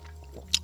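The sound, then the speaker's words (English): Ice shifts in a cup of water in a studio with a single quick, bright clink and a soft liquid slosh, fairly quiet against a low steady hum. “In the studio with us today, you think everybody hears my ice moving in my cup?”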